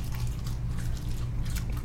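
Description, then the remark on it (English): Someone eating close to the microphone chews a crunchy vegan, gluten-free, dairy-free seaweed snack, giving irregular crisp crackles and crunches that come in uneven bursts over a steady low hum. “Are we good, eating, like, close to the mic, too, so you can get the ASMR vibe?”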